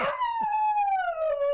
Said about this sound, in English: The fake news dog.